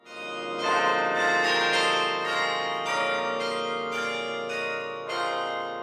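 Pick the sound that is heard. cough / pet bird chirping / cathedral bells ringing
cathedral bells ringing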